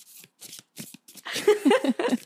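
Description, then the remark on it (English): A deck of connection cards being shuffled as an ASMR shuffle: a few short, crisp papery riffles with brief pauses between, building into a denser, louder flurry of flicking cards at the end. “I'm going to do a little ASMR shuffle.”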